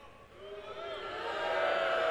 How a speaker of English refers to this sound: No, don't cheer.